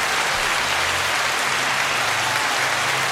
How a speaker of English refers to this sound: Is that the sound of rain falling? Or? That's applause